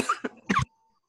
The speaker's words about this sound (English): Could you hear me coughing? I tried muting it.